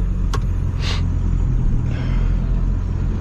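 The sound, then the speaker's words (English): A pickup truck with a tuned Power Stroke engine rumbles steadily with deep low-end throb, a brief hiss of air and a few clicks over the top as the truck pulls away for a drive; no one speaks. “And we'll take this for a little drive.”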